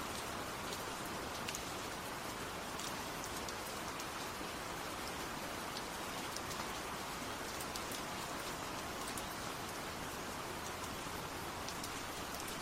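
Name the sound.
rain falling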